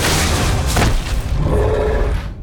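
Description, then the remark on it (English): A heavy thud with a deep, booming low end as Ochopi lands on the ground after leaping from a tree, rumbling on for a couple of seconds before cutting off. There are no voices. “Ochopi landed with a thud a few paces in front of Skinner.”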